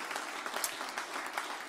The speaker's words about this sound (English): Can you give the Lord a hand clap of praise, and that'll be our dismissal tonight.